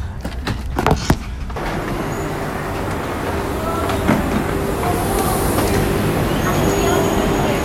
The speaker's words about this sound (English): So I've just got off the train at Sants station in Barcelona. It is nearly 20 to 3 in the afternoon, and we left Madrid at 11:30.